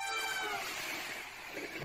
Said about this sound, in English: You can hear the train. I hear that train coming. Oh, there's no, now you can see the train.